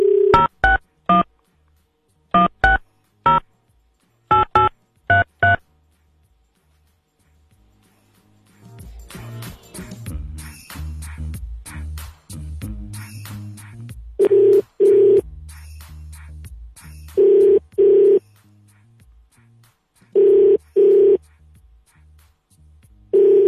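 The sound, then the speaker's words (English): A quick run of touch-tone dialing beeps, then a pause and a repeating ringback tone in steady pairs of bursts, heard over muffled background voices and rustling. “Answer the phone.”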